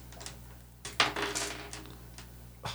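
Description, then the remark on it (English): A small die rolls off a sheet of paper and clatters and rattles across a hard tabletop, a cluster of sharp, bright clicks and a short skittering roll, fairly quiet, with no one speaking. “It was great, and then it rolled off the paper.”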